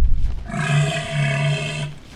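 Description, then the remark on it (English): A male elephant seal lets out a single deep, rasping roar, sustained for about a second and a half, loud, with no voices around it. “It is when you consider a male elephant seal weighs nearly 9,000 pounds.”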